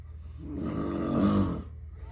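A single long, loud human snore rattles through, swelling over about a second with a rough, vibrating buzz before fading. No one speaks.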